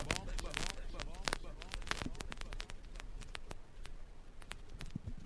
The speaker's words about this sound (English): Analog special now. Vinyls. In the crackling.